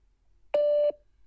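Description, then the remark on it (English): A single steady electronic voicemail beep from a phone hotline sounds clearly for about a third of a second against near silence, loud with an abrupt start and stop. “Leave a message after the beep, and you will be connected with us.”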